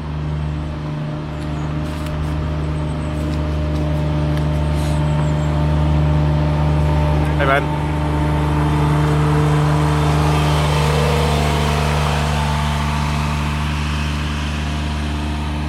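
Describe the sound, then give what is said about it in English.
A lawnmower, operated by a man passing by outdoors, drones steadily and loudly throughout, its low buzzing hum growing slightly stronger midway as it passes, while a man briefly calls out a short greeting. “hold on, there's just a guy coming. I will wait till he passes. He's the lawnmower man.”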